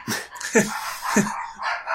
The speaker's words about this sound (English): The dogs like it. Oh, motherfuckers. Barking at the wind.